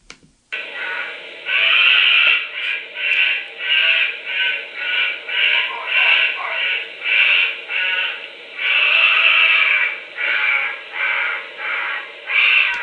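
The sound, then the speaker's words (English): A honey badger's harsh, rasping screams repeat in a rapid, pulsing series, loud and raw with a grating, crow-like quality, lasting over ten seconds without pause. “So this is a honey badger scream vocalization.”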